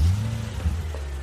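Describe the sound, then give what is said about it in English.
A steady low engine rumble from a car in motion driven by a mother, continuous, with a slight surge partway through and no voices. “Mom, stop the car.”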